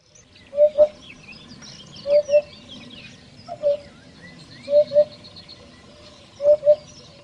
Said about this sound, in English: Have you ever heard the tweets of a bird?